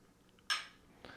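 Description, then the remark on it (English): Glasses clink together in a toast: one bright, ringing clink that fades out, followed about half a second later by a softer second tap. No talking is heard. “Cheers. Cheers.”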